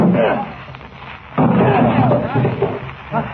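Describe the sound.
A sudden loud crash bursts in partway through as a door is broken down, followed by a sustained noisy clatter with voices mixed in, all with a thin, radio-like tone.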